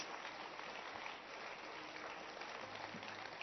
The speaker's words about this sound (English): Oh, keep clapping your hands.